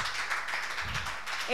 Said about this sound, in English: Thank you. Give her a clap. We can do better.